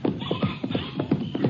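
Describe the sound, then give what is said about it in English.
Horse hooves clip-clop in a steady, even rhythm, about four or five clops per second, moderately loud against a faint background rumble. “I got charcoal out of the trailer, and the sheriff got a horse from the ranch barn.”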